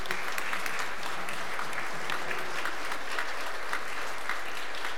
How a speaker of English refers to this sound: And also some special applause to our children and mom choir.